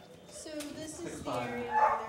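Greyhounds bark and yip in quick, overlapping bursts, with some high whining mixed in, inside the cement block paddock of the Wheeling Island Casino dog track, where they are prepared for the day's races. The dogs sound excited, and the noise grows louder and more insistent toward the end.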